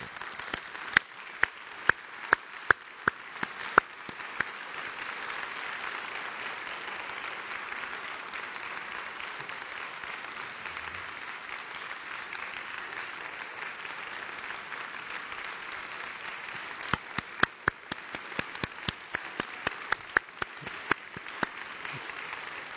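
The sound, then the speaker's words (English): An audience applauds the music team before a sermon, steadily for over twenty seconds, a dense wash of clapping with a few sharp, louder individual claps standing out at the start and again toward the end. “He's trying to take my preaching time by clapping now.”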